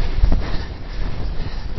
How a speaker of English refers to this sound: Windy.